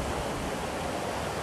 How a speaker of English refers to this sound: Last but not least, the raging river.